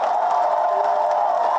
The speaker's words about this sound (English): And listen to that. Listen to that roar. Listen to the roar of the crowd. People jumping up and cheering.